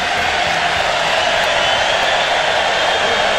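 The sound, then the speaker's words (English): A crowd at a Trump rally in Pennsylvania cheers loudly, a dense, steady roar of voices that holds at full volume for a few seconds without pausing or fading. “And the crowd goes wild.”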